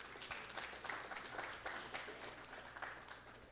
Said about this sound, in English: And I just want to thank both of y'all. So y'all can give yourselves a round of applause for that.